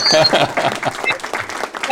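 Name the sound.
applause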